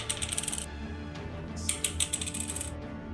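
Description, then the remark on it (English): Dice rattle and clatter in two short bursts, a quick run of sharp clicks, a pause, then another longer tumble of small hard knocks on a surface, as damage dice are rolled in a tabletop game. “It's going to be a lot of rolling.”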